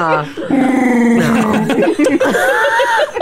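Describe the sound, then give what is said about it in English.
A person imitates a sad Wookiee, letting out a loud, sustained growling moan that wavers in pitch and rises into whimpering, howl-like cries for about three seconds. “I sound like a sad Wookiee.”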